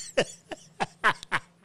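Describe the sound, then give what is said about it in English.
A person imitates an old woman's coughing: five rough, raspy hacks in quick, uneven succession, fairly loud, with no talking. “It's just an old woman coughing.”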